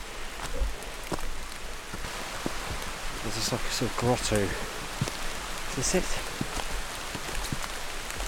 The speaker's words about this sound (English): Wish it wasn't raining.